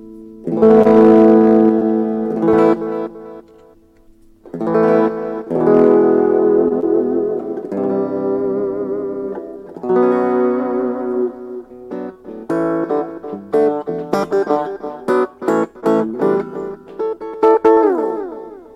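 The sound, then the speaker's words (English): Electric guitar played through a small amp using its built-in distortion, with sustained chords and melodic phrases separated by short pauses, then quicker choppy strums toward the end. Loud and gritty, with no voices. “Yeah, it's really a great sounding little amp. Has built-in distortion too.”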